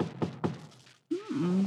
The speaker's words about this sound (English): Somebody's at the door. This time of night? Yes. It's pretty late for...